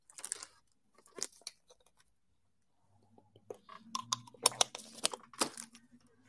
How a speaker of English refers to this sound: Had to sip some of that holy water, you feel me?